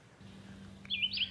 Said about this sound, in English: I'm going to start this one off with just voices, child and bird voices